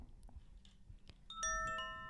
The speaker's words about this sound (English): Time for the chime.